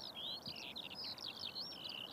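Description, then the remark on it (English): A tiny skylark sings under a Dublin sky on a spring morning, a continuous, high-pitched stream of rapid trills, clicks and thin whistles, warbling up and down without pause; no one speaks. “For 1 hour under an empty Dublin sky, I'd listen to the trills, clicks, and whistles of the tiny lark's song.”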